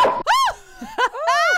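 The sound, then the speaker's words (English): A dog named FIFO, which has got into the room, barks a few sharp, high-pitched barks in quick succession, loud and with no talking over them. “Son of a bitch, FIFO got in here.”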